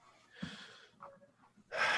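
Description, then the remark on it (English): Deep breaths drawn in: a long airy inhale, a short pause, then a louder, rushing second breath at the end. No one speaks. “Taking a couple of deep breaths.”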